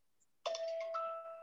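A phone's text notification chime rings out once, a bright, clear electronic tone with a sharp onset that lingers and slowly fades, fairly loud with no voices over it.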